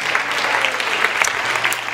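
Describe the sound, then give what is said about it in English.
An audience claps in praise to the Lord, a steady, dense applause with many hands overlapping into a continuous bright patter that holds an even loudness for the full two seconds, with no voices audible. “Let's give that hand clap to the Lord.”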